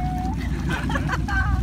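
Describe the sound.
Steady low engine rumble of boats motoring in to shore, called in because of lightning, a constant droning hum with a faint whine, with indistinct voices murmuring over it.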